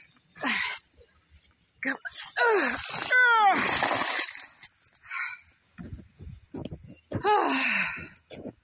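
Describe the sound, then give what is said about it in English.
Water pours out of a container in a short splashing rush, mixed with a dog's high whimpers and yelps, followed by scattered rustling and another burst of noise. “Alright, that was the last container with the water in it.”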